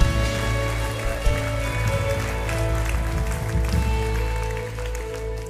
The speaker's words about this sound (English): Give these wonderful people a big clap offering, amen.